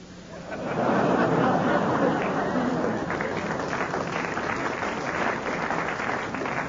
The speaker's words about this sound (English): Why didn't you clap the good ones?